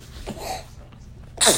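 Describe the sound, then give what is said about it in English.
A single sneeze: a breathy intake builds up, then a sharp, loud burst of air explodes at the end, with no talking around it. “Bless you.”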